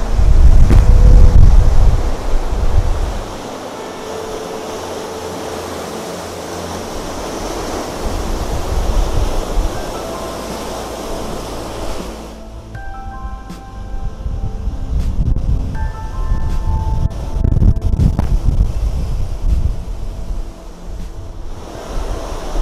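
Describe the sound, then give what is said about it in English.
Stormy ocean waves surge and crash at a beach on a cold, blustery day under a constant roar of wind buffeting the microphone, with a loud opening burst, a lull, then renewed heavy rumbling and faint tonal whistles. “Enjoy the power of the universe and enjoy the storm.”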